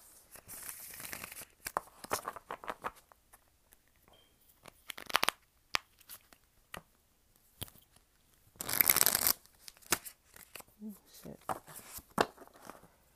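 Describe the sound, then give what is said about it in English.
Cards are shuffled in a few bursts: quick papery riffles and flicks, one louder riffle near the middle, with soft handling noises between them and no one speaking. “Basically saying you can't shuffle.”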